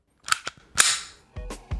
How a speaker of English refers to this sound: That's a gun.